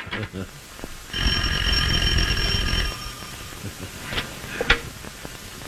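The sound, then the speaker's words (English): A loud electric telephone bell rings in one sustained burst of nearly two seconds, harsh and metallic, as a young man phones a potential date, then stops, with faint room noise and murmuring before and after. “So yeah, right when I pick this up, the young man is calling his potential date on the phone.”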